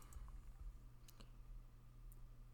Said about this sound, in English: It looks like he's typing.